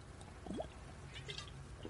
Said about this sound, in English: I should wait till the break, but I drink it during the break, and I drink it right now because it is insanely hot.